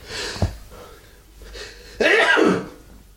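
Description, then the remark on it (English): A single loud, explosive sneeze bursts out after a couple of quieter breathy intakes, then fades quickly into silence. “Bless you.”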